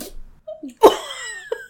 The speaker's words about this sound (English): excuse us while Robin's puppy has the sneezes